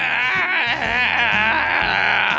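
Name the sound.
newborn baby crying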